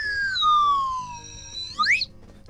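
A slide whistle plays a long, slow downward glide in pitch, then finishes with a quick, sharp swoop upward before cutting off. The tone is fairly loud over a low background rumble.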